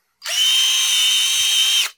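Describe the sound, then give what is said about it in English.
A power drill in a workshop whirs steadily at high speed for under two seconds as it is being put away, a loud, sustained whine that starts and stops abruptly, with no talking. “I'm putting away the drill, so.”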